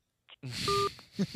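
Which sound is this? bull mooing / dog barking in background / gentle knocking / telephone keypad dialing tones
telephone keypad dialing tones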